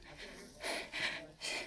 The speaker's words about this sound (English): Her breathing becomes quick and shallow. She tries to catch her breath.